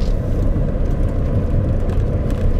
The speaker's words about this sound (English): A car there.